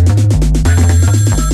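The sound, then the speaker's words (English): A phone rings loudly, an incoming call to a second 'trap' phone, its ringtone a quick, rhythmic musical pattern of repeated pulses over a steady bass, with no one talking. “Oh my god, she calling my other phone. She calling a trap phone.”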